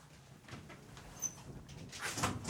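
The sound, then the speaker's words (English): A window slides open with a short, scraping rush of friction near the end, preceded by faint creaks and small clicks of the frame, fairly quiet. “I want to open this window.”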